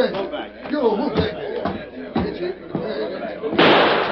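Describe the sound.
Voices murmur and call out, broken by a few sharp knocks, then a loud gunshot bursts through glass, leaving a harsh, hissing wash of noise at the end.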